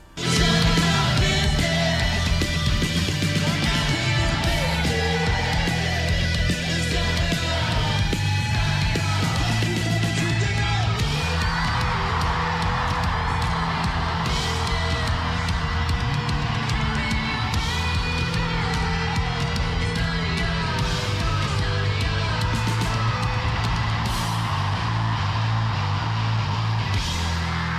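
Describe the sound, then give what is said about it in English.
Loud, distorted live music from a performance at Radio 1's Big Weekend with a heavy bass line and a dense wall of sound, the roar of a cheering, yelling crowd blended throughout, compressed and muddy like a phone recording of a concert. “no point in videoing a show with your phone. There really isn't. That's as best as it's going to sound.”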